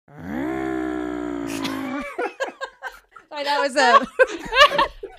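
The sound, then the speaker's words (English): A voice imitates a gently purring, non-gas powered chainsaw, evoking the film Mulholland Drive, with a steady, low, buzzing drone lasting about two seconds and dipping slightly in pitch, followed by choppy bursts of laughter and voices. “That was like your chainsaw noise. I know that was like a purring, a gentle version for the drive.”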